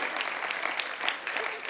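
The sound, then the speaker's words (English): A large group claps together in dense, continuous applause that holds steady for the whole moment, a full wash of many hands with no single clap standing out. “If you're not clapping, angels are judging you.”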